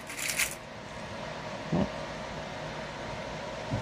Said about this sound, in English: I'm going to gingerly pull out the paper clips first, hoping to leave all the T-pins so I don't have to get stabbed 1,000 times.